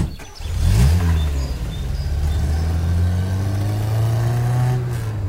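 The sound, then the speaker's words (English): A car engine revs up and accelerates as the car drives off in New Mexico, its low harmonic drone rising in pitch around the first second, then settling into a steady, loud hum as the vehicle drives along. “All right, back in the car. Okay, back in the car. Here we go.”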